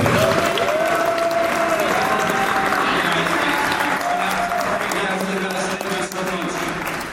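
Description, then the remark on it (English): An audience breaks into a loud, sustained round of applause, dense clapping holding steady for about seven seconds, with a few cheering voices mixed into the crowd noise. “Let's give a big round of applause to.”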